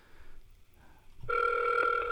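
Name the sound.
phone call ringing out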